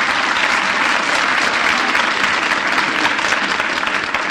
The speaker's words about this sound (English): Let's have a little applause here for Miff. How about it?